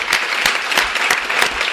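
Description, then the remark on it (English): An audience at a Skylight Books author reading claps steadily for the novel Catriona, the dense patter of many hands forming a continuous wash of applause with a few sharper individual claps standing out. “All right, well, I think this is a wonderful conversation, and could we all give a round of applause for Catriona, a wonderful novel.”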